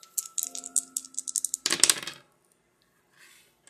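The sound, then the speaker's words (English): Dice rattle briskly together for about a second and a half, then clatter loudly onto a hard surface and settle, landing on a six, followed by near silence. Fairly loud, no talking. “Let's go ahead and roll the dice and find out what's blocking your heart's desires.”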